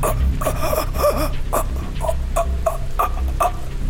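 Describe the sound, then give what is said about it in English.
A voice imitates a man choking and gasping: a rapid series of strained, breathy rasps and croaks repeating about twice a second, fairly loud, with no speech. “As you get close to him, now within a couple of yards, all you hear coming out of his mouth is a gasping noise.”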